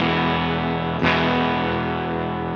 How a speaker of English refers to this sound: Hit me with a little bass line. A little before? Yeah. Very minimal gain. Now I'm going to go volume at like 9 o'clock.